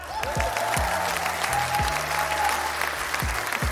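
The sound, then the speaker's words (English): Sustained audience applause for Switzerland, a dense steady wash of many hands clapping at an even loudness for several seconds, with a few low thumps underneath and no clear voices. “Round of applause for Switzerland.”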